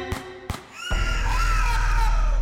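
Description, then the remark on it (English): Two quick gunshots are followed by a woman's loud, sustained scream that holds steady for the rest of the moment, piercing and shrill. “Two quick shots rang out, and that's when she screamed.”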